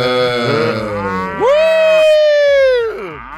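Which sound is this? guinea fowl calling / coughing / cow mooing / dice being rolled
cow mooing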